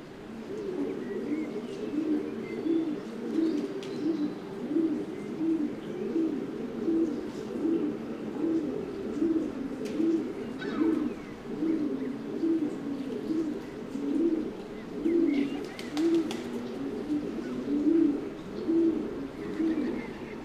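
Feral pigeons coo continuously in low, throaty, rolling calls, several birds overlapping in a steady burbling chorus, with a few faint higher chirps in the background.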